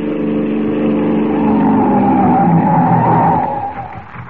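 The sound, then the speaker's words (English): A police car roars in at a crossroads in the dark and its tires screech in a long, loud skid, the squeal bending and fading as the vehicle comes to a halt. No voices are heard. “They crouch in the darkness as the car approaches.”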